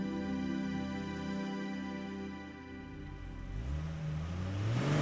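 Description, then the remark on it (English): A car engine hums steadily with a low, tonal drone, then its pitch climbs toward the end as the vehicle moves; no voices are heard. A car arriving at a house, its tires on gravel. “At last, she heard the crunch of tires on gravel, the sound of voices raised and doors slamming.”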